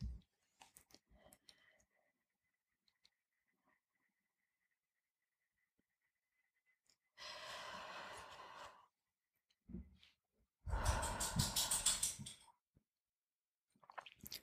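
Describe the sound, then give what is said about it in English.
Slow, deep breaths drawn in and let out, two long airy breaths separated by quiet pauses, with faint mouth clicks beforehand and no talking. “Take 3 really deep breaths.”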